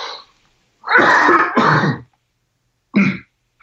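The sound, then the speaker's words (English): A fairly loud bout of coughing and throat clearing: two harsh bursts back to back, a short pause, then one more quick cough, with no talking. “I'm going to have to cough again.”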